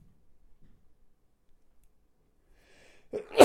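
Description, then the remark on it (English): Near-silence, then a faint intake of breath followed by a single sharp, loud sneeze burst right at the end. “I might sneeze, sorry.”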